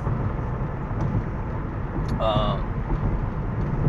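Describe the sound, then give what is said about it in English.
A steady, dense low rumble of road and engine noise fills the interior of a moving car, with a brief tonal chirp or beep about halfway through. “And I'm not doing this in my, I'm doing this in my car because this is probably the best time I could probably do this recording.”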